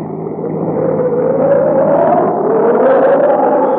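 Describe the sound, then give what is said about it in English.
A car engine drones steadily and loudly beneath a dense, rushing roar of strong storm wind as it drives through hills, its pitch swelling slightly as it drives on, with no voices. “You'll never be able to keep the car on the road with a wind like this.”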